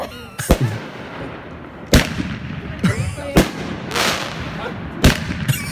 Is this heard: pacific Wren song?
no